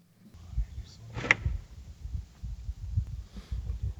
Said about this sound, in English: Now here's the wood knock that they gave him. This is the best.